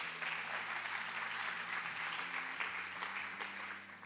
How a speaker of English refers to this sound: Loud applause to the Lord.